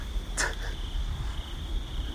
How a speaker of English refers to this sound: Oh. Oh my god. Will you hear that? Oh, that's the cricket.